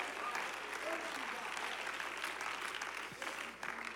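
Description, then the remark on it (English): Light, polite golf-clap applause from a church audience during a Sunday morning service, a steady patter of scattered claps at moderate volume with no standout cheers, fading slightly toward the end. “I'll never understand Sunday morning golf claps.”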